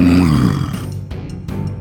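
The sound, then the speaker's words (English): A deep, rumbling wolf growl, loud at first with a throaty low pitch, then trailing off into a rougher, quieter snarl with a couple of breathy bursts. No voices. “It leaps out, and just with a vicious maw coming out from the grass, you step aside and it completely overshoots you, but lands, spinning on its haunches, and looks you down in the eye and growls.”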